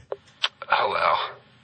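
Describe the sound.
A voice mimics phone dialing: three short, quick beep-like bursts, then a longer wavering vocal tone like a ring. Fairly loud, with no other sounds.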